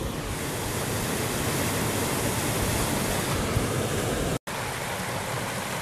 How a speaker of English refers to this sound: Hanging out by the waterfall that's iced over. A lot of icicles. Looks great. About a 6-foot drop.